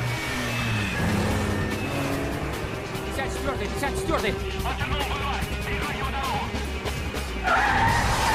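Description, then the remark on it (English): Roaring car engines and screeching, skidding tires fill a loud, continuous car chase scene from a film, with rising and falling engine whines throughout while a man talks over the action. “Well, our car chase was the biggest set piece of the film, and I was very lucky.”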